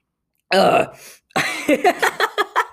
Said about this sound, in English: Sorry, I have to clear my throat.